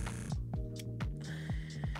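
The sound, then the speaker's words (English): A steady buzz from a Quip electric toothbrush being used, with a low, humming drone that pulses rhythmically, dipping and surging about four times a second. Moderately loud, with no talking. “Here's a simulation of using a Quip toothbrush.”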